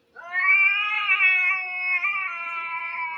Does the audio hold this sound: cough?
no